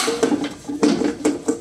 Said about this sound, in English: you're just going to lay all of your expertly cut vegetables on this baking sheet